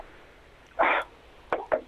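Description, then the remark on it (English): Three quick, sharp raps on a shop window, evenly spaced, preceded by a brief scuffing burst; no one speaks. “Knock on the window.”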